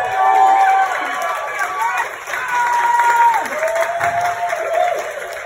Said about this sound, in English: 4 months ago, you gave one of the most powerful speeches at the Cycle for Survival event. There were hundreds of people that were roaring and cheering you on.